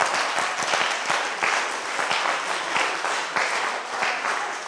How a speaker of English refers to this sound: Clap for Jesus.